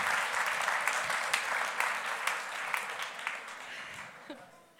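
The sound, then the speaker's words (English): Sustained audience applause from a church audience, many hands clapping in a dense, steady wash that fades slightly toward the end, with a brief voice near the close. “Can I have a round of applause for Hannah and Raffi, please?”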